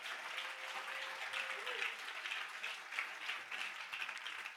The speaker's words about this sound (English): Give the Lord a big clap offering for that.